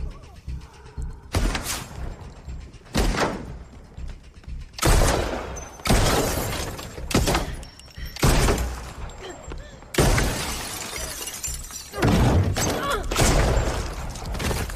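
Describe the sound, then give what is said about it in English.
In a horror movie scene, a woman fires a rapid, irregular string of loud Desert Eagle pistol gunshots at a car over about fifteen seconds. Harsh bangs and noisy scuffling come in between as the car's driver's side door is kicked open. “kicks the door, the driver's side door open, hits the gun. She flips it around and blows her own brains out.”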